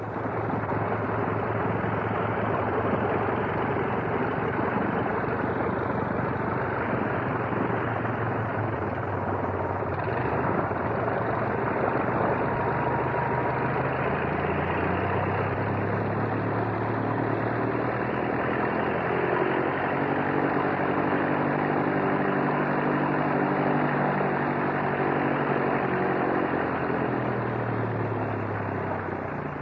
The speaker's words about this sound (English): But this is the sound of a training plane, and this is what the, in fact, was the first aircraft engine that many people all over the country, if not all over the world, heard. And it's the sound of the famous OX-5 engine. Nice sound, isn't it?